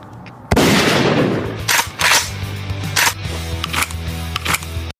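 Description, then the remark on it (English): A loud gunshot blasts out and rings down in a political ad, followed by several more sharp cracks spaced over the next few seconds, all over a low, sustained musical drone with no talking. “Complete with a gunshot.”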